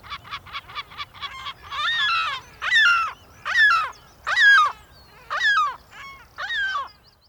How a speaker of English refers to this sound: The lesser black-backed gull.